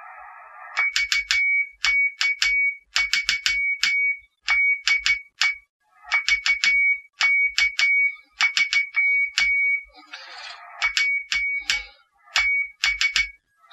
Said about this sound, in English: I think that was correct Morse code. It's been that long since I've actually sent my own call sign, but there you go. I don't know whether that's particularly chirpy or clicky.